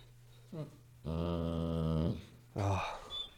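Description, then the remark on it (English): A dog named Pain lets out a short growl, then a long, drawn-out whining moan, followed by another brief whimpering growl, all fairly loud against a quiet low hum. “But let's throw the oh my god, dude, my dog Pain, you've been out.”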